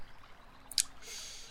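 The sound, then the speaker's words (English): A faint, steady burble of a river, with a brief sharp high bird chirp partway through and a soft swell of rushing hiss near the end. No one speaks. “You can hear the faint burbling of the river, and you can hear birds chirping around you.”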